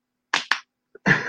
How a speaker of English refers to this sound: Oh, the slap bracelet. So, in the spirit of SFBX, yeah, slap bracelet.